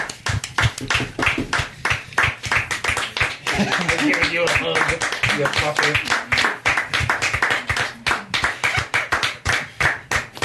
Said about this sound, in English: Fucking slow clap.